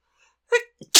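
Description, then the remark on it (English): A single loud sneeze: a quick voiced intake of breath, a short catch, then a sharp, hissing burst at the very end. “I'm gonna sneeze.”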